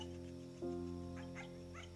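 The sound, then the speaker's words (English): A dog makes a few short, high whining yelps in the background, spaced across a couple of seconds, over a constant low electrical hum, recorded outdoors at about 12:54 at night. No one speaks. “He will not be quiet, because my grandmother invited our dog to come stay with hers to see if she could allow him to sleep in the same kennel as her.”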